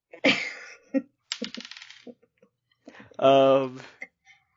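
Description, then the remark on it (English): Dice being rolled for a deception check: a quick run of small hard clicks and rattles, like dice tumbling across a table, preceded by a sharp clatter and followed by a short voiced exclamation. “Roll for deception.”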